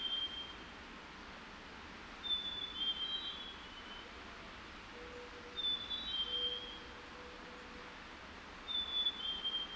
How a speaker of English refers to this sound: Do you hear the mourning dove cooing in the distance?